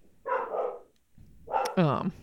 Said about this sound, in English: That's some dogs. My dog Penny. Yep, that sounds like Penny.